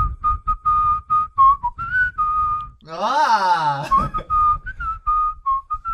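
Someone whistles a cheerful holiday-style melody up close, a clear string of short and held notes, briefly interrupted midway by a louder breathy vocal sound before the tune picks back up.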